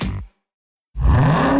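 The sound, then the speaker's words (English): A supercharged 6.2-liter Hemi V8 engine roars in a short loud burst, drops into silence, then revs again with a deep, rising, throaty growl that stays loud to the end. “Most people just hear an engine. We hear a 6.2-liter Hemi V8 with a supercharger that accelerates so fast, it'll suck the air out of your lungs and knock you back in your seat like you're an astronaut in a rocket ship”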